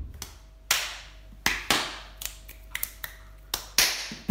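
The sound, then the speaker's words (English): Sharp slaps and thumps of a foot, knees and hands striking a floor by a dancer kneeling in a choreographed dance, sounding like hand boning, about a dozen crisp hits in an uneven, syncopated rhythm, some landing in quick pairs, with no talking. “And I just take one of my feet and I step forward and I just bang my foot and I bang my knees and my hands and it really makes it sound like hand boning kind of.”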